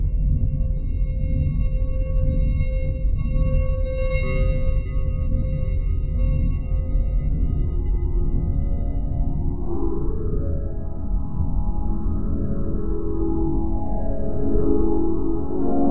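A big, low synthetic drone hums steadily like a spaceship engine, with bubbling, atonal warbling tones rising and swirling over it in the second half. No voices.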